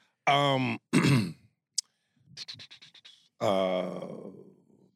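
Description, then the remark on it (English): A strained, groaning throat clearing, then a quick run of short, muffled coughs held back in the throat, closing with another drawn-out voiced groan, fairly loud with no speech. “I didn't want to like have this like huge coughing fit, but I should have because it would have been easier.”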